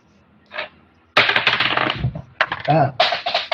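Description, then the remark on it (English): Six-sided dice clatter and tumble across a hard tabletop in a roll-off: a light tap, then a long run of rapid, overlapping rattles, with a voice briefly audible partway through. “Jiraiya and Loxley, roll off. Give me a D6 each.”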